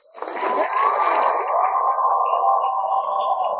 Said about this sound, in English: It's always nice to add their feedback, their applause to the show. I know you all appreciate it, too. It's sort of hard to fit them in this little booth here, let me tell you, but I appreciate them anyway.